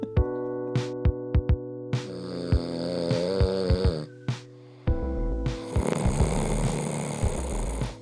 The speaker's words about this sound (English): My mum and dad sleep in separate beds because mum doesn't want to listen to dad snoring.